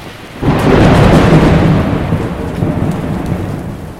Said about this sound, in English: Not long after leaving the harbor, the boats ran into severe weather. And as they got further into the Atlantic Ocean, the wind, rain, and waves got even stronger.